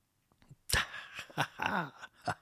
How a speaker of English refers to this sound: I've stopped yawning.